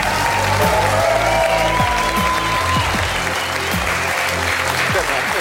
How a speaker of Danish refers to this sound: Og I kan godt blive ved med at klappe, for nu kommer stjerneskuespiller og pilot i øvrigt. Og så kæmpe fartfreak, Dar Salim.